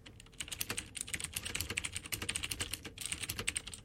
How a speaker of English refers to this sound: Let's demo the clicky switches. So wait, is this the silent keyboard? This is the louder one.